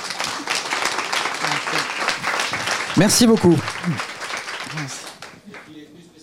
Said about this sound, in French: Donc, je pense que ça mérite une salve d'applaudissements.